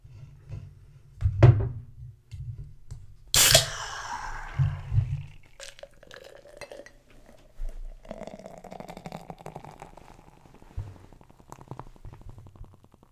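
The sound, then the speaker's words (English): Soda is poured hard into a glass: a couple of sharp knocks and a low gurgling rumble, then a steady wash of crackling, hissing fizz that carries on to the end. No one speaks. “That is a hard pour. This is as hard as I can make it.”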